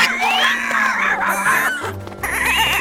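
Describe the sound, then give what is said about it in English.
A goat bleats loudly in long, wavering cries that run almost without pause, with a low hum and scuffling beneath and a brief break near the end. “how are you doing with the goat?”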